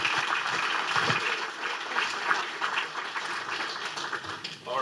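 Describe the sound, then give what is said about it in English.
A crowd at an innovation awards event applauds a person who has just received an award, steadily for the whole stretch, a dense, sustained wash of many hands clapping at once, fairly loud and even, with no voices standing out. “One more round of applause”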